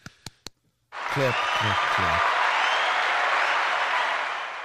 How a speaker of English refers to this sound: Feels good, man. Golf clap.